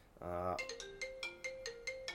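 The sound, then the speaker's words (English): A mobile phone rings with an incoming call, its ringtone a bright, repeating electronic melody of quick chiming notes, clear, following a brief humming tone at the start. “But of course somebody's tried to call me, so if you can just pretend that didn't happen,”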